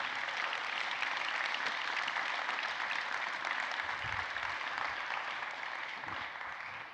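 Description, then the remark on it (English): A crowd claps steadily for several seconds, a dense, even wash of many hands with no pauses, tapering slightly at the very end, applauding a nine-year-old boy who is about to be baptized. “If y'all would, please give a round of applause for Levi Smith.”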